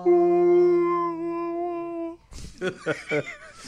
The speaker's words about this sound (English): Crikey, you listen to that sound? That's the singing of a humpback whale.